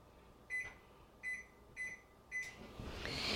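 Four short electronic beeps from a microwave keypad, evenly spaced, as it is set for 15 seconds to melt butter and chips, followed by the oven starting up with a steady, rising hum and whir. No one speaks.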